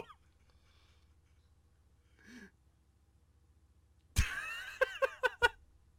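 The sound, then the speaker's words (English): Near the end, birds on the attack suddenly break into loud, harsh squawking: a chaotic burst followed by four or so sharp, rapid cries, after several seconds of near silence. “Get him, birds! Get him!”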